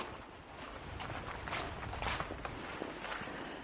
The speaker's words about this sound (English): So the only trouble is with cold weather like this is that everything is utterly silent. Well, you can hear me trudging through leaves, of course.